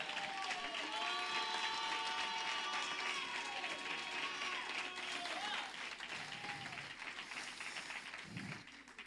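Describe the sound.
An audience applauds in a dense, steady wash of clapping while voices whoop and cheer over it, the applause easing slightly toward the end.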